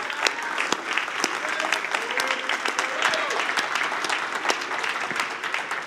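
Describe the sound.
A crowd in the Valley Church audience applauds steadily to welcome a guest, dense overlapping claps forming a continuous wash of sound with a few sharper individual claps standing out, plus faint murmuring voices underneath.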